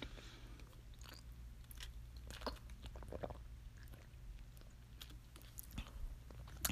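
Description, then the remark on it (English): Loud, wet chewing and crunching of a person eating in Minnesota, with irregular bursts of bites and smacking over a steady low hum, no talking. “I'm not a quiet eater. I wish I was, but I'm not. I'm a loud eater.”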